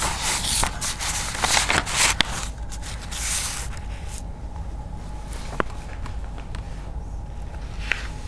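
household object, shuffling through papers

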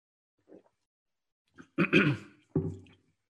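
human body sound, coughing

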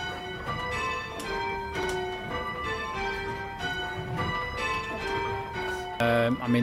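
signal or alarm, church bells ringing

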